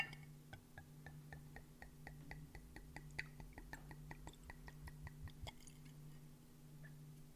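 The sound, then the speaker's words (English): Very dark red wine glugs steadily from a bottle into a glass, a quick even run of soft wet pulses over a low, constant hum, with no talking. “So let's pour some of this. Satisfying. Very satisfying sound.”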